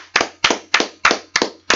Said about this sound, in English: Special round of applause to our special guest in the building,